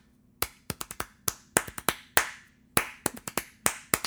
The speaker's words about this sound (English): I'm going to see if I can clap and not, you know, blow everybody's ears out. You can clap the rhythm of it with no tonality, and people know what it is. Exactly what it is.